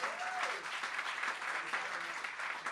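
Steady audience applause for a performer who has just finished fills the whole stretch, a dense wash of many hands clapping at once, fairly loud and continuous without breaks, with no voices standing out above it.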